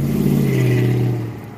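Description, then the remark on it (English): A car engine roars past in the background, a loud steady low drone with a rising then falling pitch that fades slightly toward the end of the short clip, no voices present. “There's the car roaring in the background as I say that.”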